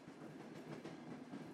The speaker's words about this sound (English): The train clicked and clacked over the tracks.